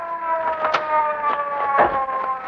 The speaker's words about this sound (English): here comes a police car. Yeah, we'll flag it down. Get this guy under handcuffs.